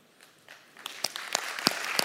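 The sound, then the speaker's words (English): A crowd at a Memorial Day gathering breaks into applause for those standing who lost loved ones serving in the military or as first responders. It starts as scattered claps and quickly swells into dense, steady clapping, with sharp individual hand claps standing out. “Because while we applaud you, we also want to pray for you.”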